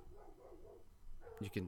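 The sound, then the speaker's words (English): A dog lets out a couple of sharp, loud barks in quick succession near the end, following a stretch of low, murmuring voices in the background. “This is a dog go crazy.”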